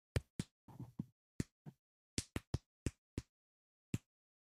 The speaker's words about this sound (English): So Glade walks up to the door and starts to do a series of knocks.